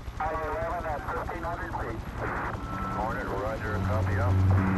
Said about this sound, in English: The swim teams were on the helicopters racing toward the splashdown site.